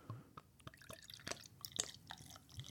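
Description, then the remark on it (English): A dark Baltic Porter beer from Southern Pines Brewing Company in North Carolina is poured fairly aggressively into a glass to raise a head, with soft, irregular dripping and fizzy crackles of foam. It's quiet, with no voices. “Yeah, so right off the bat, I wasn't getting any head until I kind of poured a little more aggressively, so I think...”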